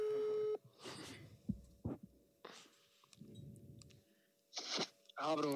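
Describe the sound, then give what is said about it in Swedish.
A loud, steady ringing tone of an outgoing phone call to a man sounds for about half a second at the start, then cuts off as people talk and handle things. “Oh my God, jag ringer honom nu. Jag ringer snubben nu.”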